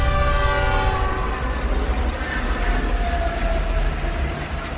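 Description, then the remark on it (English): A train rumbles loudly, its horn blaring in a long, sustained blast over the heavy rolling noise of the cars. No one speaks. “the intensifying shakes and ear-splitting whistle told him that death was getting close.”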